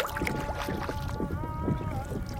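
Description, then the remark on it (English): A canoe on the Canoe Nations of the Northwest tribal journey down the Pacific coast in 2005 moves across open water, with soft irregular paddle splashes over a steady rush of wind and water, and faint sustained droning tones running through the background. “Who's that in that canoe there?”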